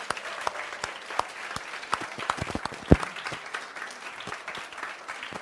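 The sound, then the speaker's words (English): An audience claps steadily for the event's volunteers, a dense wash of overlapping hand claps with sharper individual slaps popping out, one especially loud near the middle, and no voices over it. “And so I just want to first, before we even continue, just want to give a huge shout out and applause to all of our amazing volunteers who helped out this weekend.”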